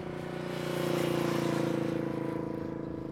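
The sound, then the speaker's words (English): A car passes by on a road beside a garden in Detroit, Michigan, its engine hum swelling to a peak and then fading away over a few seconds, with no one speaking. “On the side of the road in Detroit, Michigan. So you'll hear cars coming by, and you'll hear the breeze, and you'll hear the birds.”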